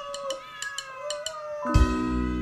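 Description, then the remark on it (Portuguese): Mirtes, a new female kitten, meows, starting with softer high-pitched cries and ending in a loud, drawn-out meow, with faint ticking sounds in the background. “A Flor foi justamente um caso como a Mirtes, que é a nova gatinha.”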